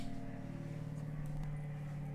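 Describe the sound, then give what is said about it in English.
An airplane passing overhead, heard as a steady, low rumbling drone with a faint hum layered on top, fairly quiet and unchanging, with no voices. “I think that's an airplane.”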